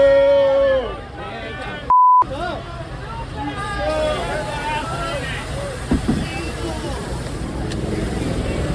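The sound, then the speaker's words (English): A crowd boos and shouts as a man is dragged off during Chappelle's stage set, many voices overlapping in long, drawn-out jeers of steady loudness, briefly interrupted by a single sharp electronic beep early on. “And then when they're dragging the guy off, listen to the crowd.”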